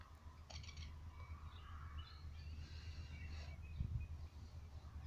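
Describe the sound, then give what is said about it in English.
Birds chirp and twitter in scattered bursts in a bird sanctuary over the steady low rumble of a ride-on lawnmower going past outdoors; the calls are moderately faint and irregular, with no talking. “So it's very nice to sit in a bird sanctuary with the occasional ride on lawnmower going past.”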